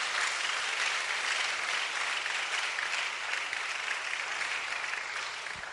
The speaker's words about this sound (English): Give a clap offering to what the Lord has done. Amen.